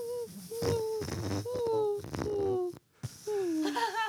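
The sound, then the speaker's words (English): A large inflated rubber balloon, squeezed by hand, squeaks and whines in a series of wavering, high-pitched tones that slide down in pitch, broken by short pauses and one brief silence. “But if I blow this balloon up like real big, and then like if you squeeze it right here, it makes this like, listen.”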